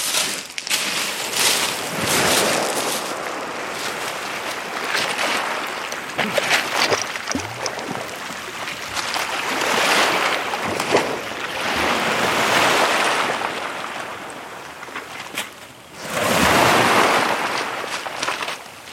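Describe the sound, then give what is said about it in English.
Loud surf washes in and out at the shoreline in repeated broad surges, with splashing water and a touch of wind noise, as a pan is filled with seawater at the water's edge to cook sea kale; no one speaks. “And while that's burning, I'm going to pop down to the water's edge there and fill up my pan with seawater, because we're going to cook the sea kale in seawater.”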